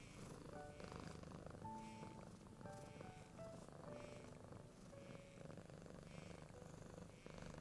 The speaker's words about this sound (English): As you rub your hand over it, as you do, the purring gets louder and louder, deeper and sweeter.